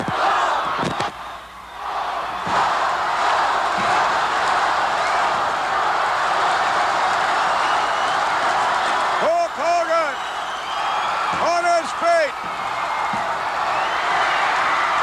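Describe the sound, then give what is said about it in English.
A huge arena crowd at a wrestling match between Hogan and Ken Patera roars continuously and loudly throughout, with a couple of sharp thuds early on and an excited announcer's voice shouting over the din. “The roar is deafening.”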